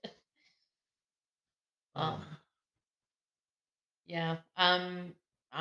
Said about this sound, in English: I mean, it doesn't help that our dog is snoring in the background, distracting us. He's sleeping good.